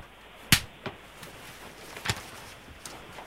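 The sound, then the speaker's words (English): Sharp finger slaps against a person's skin, two crisp smacks about a second and a half apart, with a few fainter taps between them; otherwise quiet. “A slap has been performed.”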